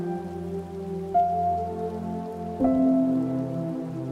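Steady rain patters on a hard surface in a continuous, even wash, with a couple of slightly louder swells and a faint sustained tone underneath. No one speaks.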